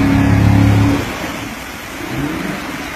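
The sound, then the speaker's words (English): A fifth-generation Camaro, a 2014 or 2015, doing burnouts in about a foot of water at a shallow ocean beach in the Middle East: the engine revs hard with a strong low growl for about a second, then drops to a rougher, hissing idle before surging again, with broad splashing noise. “is doing burnouts in the ocean.”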